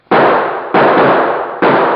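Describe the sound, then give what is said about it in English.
Three loud .45 pistol gunshots go off in an uneven rhythm, each a sharp crack with a long, noisy ringing tail. They are forceful, and no one speaks. “Give me that .45. I'll give those birds something to think about.”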